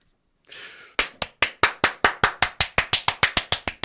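Steady, rhythmic hand clapping, about fifteen sharp claps at an even, brisk pace, each with a short ringing decay, preceded by a brief soft hiss and no voices.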